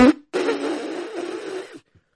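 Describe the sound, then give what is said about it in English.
A voice imitates blowing a nose: a brief onset, then a sustained, buzzy, blustery honk lasting about one and a half seconds at fairly steady loudness before cutting off. “Don't you usually blow your nose like...”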